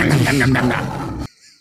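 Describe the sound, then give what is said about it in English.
A person loudly roars like a tiger, a throaty vocal growl lasting just over a second before cutting off abruptly into near silence. “Wild shape tiger.”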